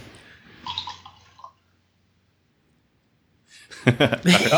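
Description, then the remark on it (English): A drink is poured into a glass for about a second, a brief trickling splash, followed by a pause and then loud voices talking over each other. “I heard someone poured a potable.”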